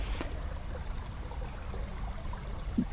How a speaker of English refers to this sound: The river is a place for me that is sanctuary, and it's sound that my mind can cope with. It's a softer sound to everyday goings on.